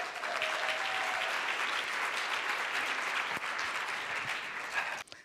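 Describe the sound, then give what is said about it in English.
A crowd claps steadily to welcome a guest from Paris, a dense, sustained burst of applause lasting about five seconds, then it abruptly cuts off. “a big round of applause”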